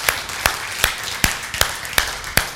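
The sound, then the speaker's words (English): Steady, rhythmic clapping by an audience, about seven sharp claps evenly spaced in unison over a busy background, with no one talking. “We can clap.”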